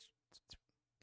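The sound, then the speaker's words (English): A few short, breathy scratching strokes, like pencil on paper, come in quiet, uneven bursts; they may be a voice imitating the sound rather than actual writing. “But I swear to Christ, it was like someone was fucking with me doing Foley work the entire time. Like pencil to paper.”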